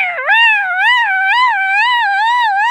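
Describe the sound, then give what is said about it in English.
A voice imitates sirens going off as a vehicle edges through a 1.8-metre maximum height barrier, a loud, high, sustained tone that rises and falls in smooth regular waves for about three seconds, with no other talking. “Sirens start going off.”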